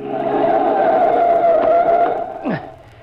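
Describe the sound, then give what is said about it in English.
Tires shriek in a long, loud, steady squeal as a car skids when a truck cuts it off, then a short downward lurch and the noise cuts off abruptly as it stops. “Oh, that crazy truck driver cutting us off.”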